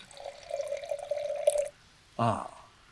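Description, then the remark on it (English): Wine, a 2021 Primitivo Rosé, pours from a can into a crystal glass in a steady gurgling stream for under two seconds, then stops; a short burst of a voice follows. “A can of 2021 Primitivo Rosé. Nice. Cracked into a beautiful glass.”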